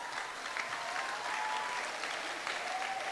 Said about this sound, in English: I don't know why you are clapping for me, but I'm praying for myself.